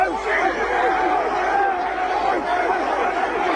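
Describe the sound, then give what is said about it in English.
Hundreds of Mongrel Mob gang members perform an emotional haka at a gang member's funeral as his coffin is carried through the crowd, loud massed voices chanting and shouting in unison with their trademark sharp barking cries, a dense, continuous roar of many people. “Steven Taiatini's coffin was decorated with Mongrel Mob regalia as it was carried through the crowd of hundreds of gang members who incorporated their trademark barks into their emotional haka.”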